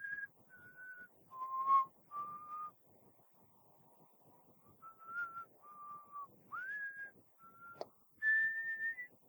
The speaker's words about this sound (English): You keep hearing the whistling.